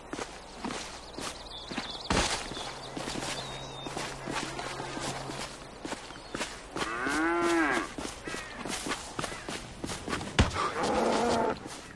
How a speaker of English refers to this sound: Mooing, furious mooing, and then a thud. What the hell was that from? So that was a video game. That was a video game. So there's a cow and a thud.